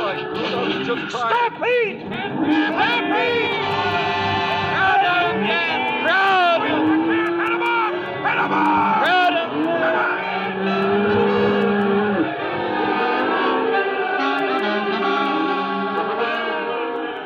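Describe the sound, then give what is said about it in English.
A stampede of 10,000 head of cattle: a dense, continuous din of many animals bellowing and lowing at once, with rising and falling wails over a steady churning rumble, loud throughout. “Stampede. 10,000 head of cattle gone loco.”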